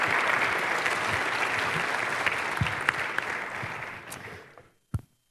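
An audience at Summit Church claps steadily for a man as he is seated, in dense, sustained applause that fades out after about four seconds, ending with a lone sharp clap or knock in the quiet.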